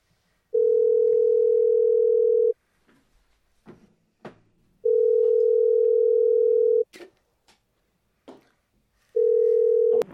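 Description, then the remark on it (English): A phone line rings out on the caller's end: three long, steady electronic ringback tones, each about two seconds, separated by pauses with faint clicks and handling noises. No one speaks. “Why aren't you answering your phone?”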